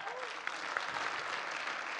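A room full of people breaks into steady applause, a dense wash of overlapping claps at moderate volume with no voices standing out.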